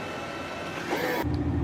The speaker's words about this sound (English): So then I'm driving to my location. It's 3:38. I pull up.